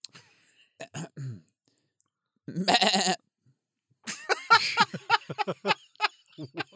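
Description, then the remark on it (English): A person vocalizes a rapid, stuttering machine-gun imitation that comes out as a wavering, goat-like bleat, delivered in several loud bursts with short pauses between them. “I was trying to make a machine gun sound, and it came out as a goat.”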